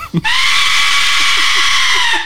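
An Aztec death whistle blasts a loud, sustained, shrieking scream, harsh and noisy with a steady high pitch, after a brief short puff at the start. It sounds eerily like a human scream, with no talking.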